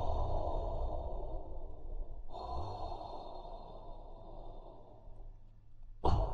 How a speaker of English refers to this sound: But as he reached the tree, he began to hear a slow and steady breathing from the elf.